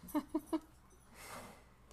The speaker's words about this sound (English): Well, guys, if you listen long enough. Dog is destroying something over there.